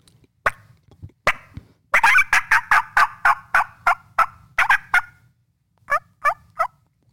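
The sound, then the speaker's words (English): A wild turkey hen calls loudly in a fast, steady string of about a dozen raspy yelps, then pauses briefly before three more clear yelps. No one speaks. “So let's say a hen, this is the first stage is a hen. I hear that, especially if I can't see her, I'm right back in her face.”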